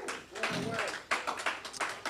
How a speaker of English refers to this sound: Put your hands together for Jesus. Oh, a louder clap offering.